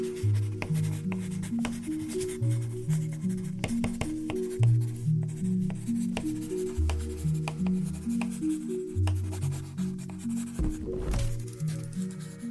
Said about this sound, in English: Someone is writing letter on the desk with pencil. It's simple idea, but it sounds brilliant.